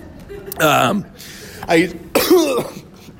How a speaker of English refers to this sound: You sick? What was that? No, it was a cough. I coughed.